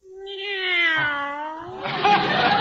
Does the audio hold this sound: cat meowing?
yes